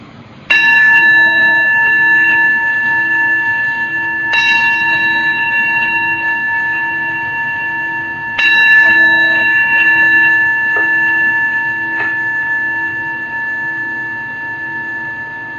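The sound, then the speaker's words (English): A meditation bell is struck three times, several seconds apart, each clear strike leaving long shimmering overtones that hum on and slowly fade into quiet. “The sound of the bell recedes, allowing our awareness to just rest with the body as it is in this moment.”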